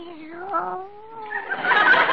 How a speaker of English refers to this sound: Meow. What's that? Oh, it's your cat. Hello, Minerva.